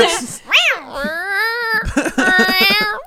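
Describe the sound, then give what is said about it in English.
A person mimics a cat, letting out a few drawn-out, whiny meows in quick succession, fairly loud, with a rising-and-falling cry followed by longer wavering ones. “Inside each strong put was a cat.”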